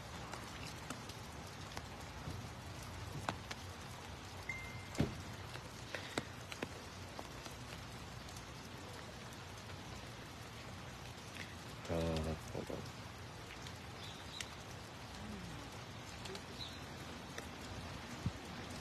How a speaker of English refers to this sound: That is, but I'm standing out here in the rain on a Saturday, so we have Team One members standing by ready to block.